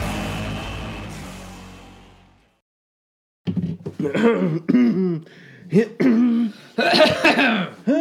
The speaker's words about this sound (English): Get the coughs out. Is it safe to cough yet? I think coughing's coming back just a little. Those are cannabis coughs. Those are not COVID coughs. Don't worry.